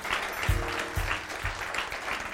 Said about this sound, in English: May y'all give the Lord a hand clap of praise this morning, amen.